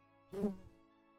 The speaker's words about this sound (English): If you think that you just heard a bee buzz past your ear, please let me remind you that auditory hallucinations are a known side effect of prolonged chronostasis quarantine, such as you were exposed to.